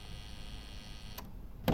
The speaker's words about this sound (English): I'll buzz you in.